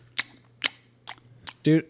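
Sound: chewing with mouth open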